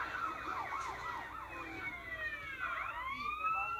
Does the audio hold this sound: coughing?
no